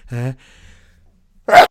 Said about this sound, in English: No, I had to sneeze. I'm so sorry. And I barely got that mute in time.